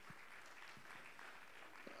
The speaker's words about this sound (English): Anybody glad you're in church? Oh, give the Lord a good hand clap today.